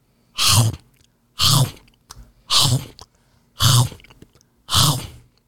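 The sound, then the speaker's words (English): A voice mimics loud open-mouthed chewing of popcorn: five wet, smacking chomps at a steady, roughly one-per-second rhythm, prominent, with brief quiet gaps between each bite and no talking. “Every bite, every single bite was right there on the teeth.”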